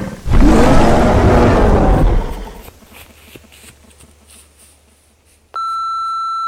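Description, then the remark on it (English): A loud, deep bellowing creature roar, like a Bigfoot cry, out in the woods, lasts about two seconds and fades into near silence, followed by a sudden steady electronic beep as a phone hangs up. “The phone hung up, like, immediately after doing that, so I don't know if they made it.”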